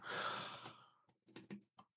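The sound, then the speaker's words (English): A long, breathy exhale gives way to a few sparse taps on a computer keyboard, slow and irregular, as someone types a search for a book's release date, with no talking. “My typing has become so slow.”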